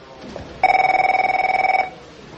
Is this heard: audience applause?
no